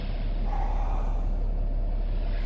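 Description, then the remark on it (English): A steady, heavy engine rumble from trucks idling at sundown, ready to leave, a continuous low drone with a faint hiss of air over it and no voices. “Sun's down and the trucks are ready!”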